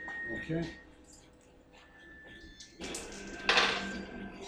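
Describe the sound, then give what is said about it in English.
Dice clatter and tumble across a hard surface in a short burst of hard clicks and rattles, with a sharper rattle near the end, while faint voices murmur underneath. The dice are rolled for a combat roll in a game and come up 33. “I rolled 33, literally. On the dice here.”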